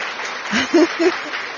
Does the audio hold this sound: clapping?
yes